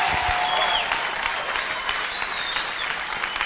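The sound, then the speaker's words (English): An audience claps their hands in dense, continuous applause, a steady wash of overlapping claps with no clear rhythm, holding at an even loudness throughout. “Keep clapping.”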